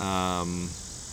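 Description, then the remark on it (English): A cicada buzzes outside with a steady, shrill high drone. A lower, rough buzzing layer cuts off partway through while the hiss carries on at moderate loudness. “holy cow, that cicada.”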